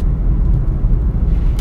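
A steady, loud low rumble of a car moving along a road, continuous engine and tire noise with no pauses.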